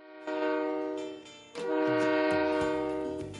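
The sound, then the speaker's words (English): A loud train horn sounds in two long blasts, the first about a second long, then a short gap before a longer second blast, its rich chord of tones ringing out clearly with no one speaking. “It's time to bring this train to a halt.”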